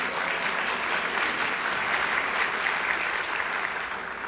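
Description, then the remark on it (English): Steady applause from an audience fills the whole stretch, a dense, even wash of many hands clapping at moderate volume, tapering slightly toward the end with no one speaking. “That's right, something to clap about.”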